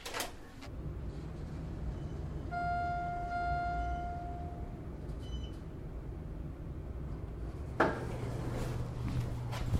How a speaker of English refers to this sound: go down the elevator, and you'll hear the noises from the elevator and the noises from the resort.